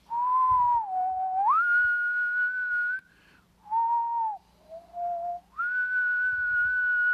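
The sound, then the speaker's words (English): A person whistles in imitation of wind: long, wavering tones that slide up and down in pitch, broken by a few short pauses, clear with no talking. “It sounded a little bit like the wind when the wind whistles and goes...”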